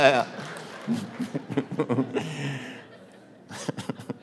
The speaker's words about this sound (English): A few of you clapped. All the people who clapped are the ones that are having the great sex, you know? All the ones who didn't, well, you know, kind of sucks there.